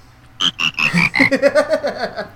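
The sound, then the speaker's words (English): A short burst of the frog song from the video game Majora's Mask, made from frog croaks, the pitched ribbits hopping through a bouncy melody in quick, rhythmic succession, clear and up front with no talking. “That's the frog song.”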